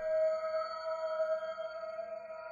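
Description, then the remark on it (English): An eerie, sustained whistling flute-like tone holds one steady pitch with shimmering overtones, droning on without a break and with no voices present. “As the pulsing lights drew closer to the school, an eerie whistling flute noise filled the air.”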